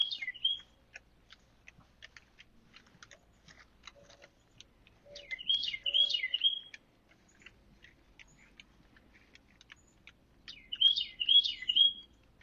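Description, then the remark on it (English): A bird sings short, high, warbling phrases in three separated bursts, with quiet pauses between them. The song is clear, with no talking. It is Emily Panic's local bird. “And then this is Emily Panic's local bird.”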